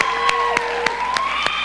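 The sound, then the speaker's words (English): An audience of regulars applauds to welcome new people in a steady, dense wash of clapping, punctuated by regular louder accents about three times a second, with sustained tones droning underneath. “In fact, if you're a regular tonight, could you give a round of applause for all the new people and let them know that we're glad they're here?”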